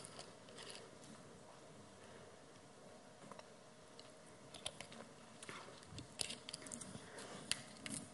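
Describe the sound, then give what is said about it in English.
Faint mouth sounds of someone drinking a glass of water: a few soft sips and swallowing clicks, irregular and quiet, clustering toward the end over a low steady hiss, with no talking. “I'm just going to get a drink of water.”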